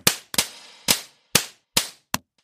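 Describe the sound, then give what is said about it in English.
Half a dozen sharp, crisp slap sound effects crack out one after another at an uneven pace, each a loud smack with a quick fading tail and silence between, no voices. “You're getting the big slap.”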